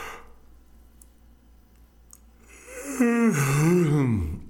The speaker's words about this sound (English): See, how many people just yawned because I yawned? That was a fake yawn, actually. I didn't even yawn. I really was trying to get a real yawn. I just don't have one in me. That was a voluntary yawn.